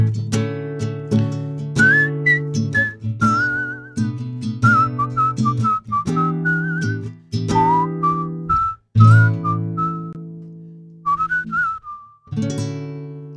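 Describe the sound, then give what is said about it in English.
A person whistles a clear, bright melody as part of a song, over a steady musical accompaniment, the tune moving in short phrases with brief pauses, fairly loud throughout. “You whistled in the song.”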